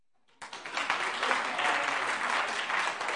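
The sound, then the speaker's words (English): An audience bursts into applause after a brief silence when the wives in the audience are asked for a round of applause, many hands clapping in a dense, steady wash that holds at a fairly loud, even level to the end. “There's even some non-wives clapping right now, all right?”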